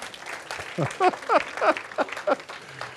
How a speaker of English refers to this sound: Y'all need to give me a round of applause for getting that out.